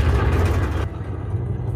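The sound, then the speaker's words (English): A loud, continuous engine roar with a deep, rumbling low end. Partway through, the brighter hiss on top falls away, leaving a heavy, throbbing drone with no one talking. “I think we should listen to this engine roar, though.”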